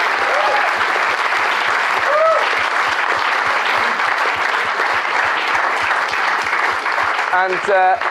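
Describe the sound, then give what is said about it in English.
A theatre audience at the St. James's Theatre breaks into sustained, dense applause for the staff of the theatre and of Avalon, a continuous wash of clapping with steady rhythmic thumps beneath, loud throughout, with a few whoops and cheers rising above the clapping. “So before we go, can we just have a round of applause for all the staff at the St. James's Theatre and at Avalon?”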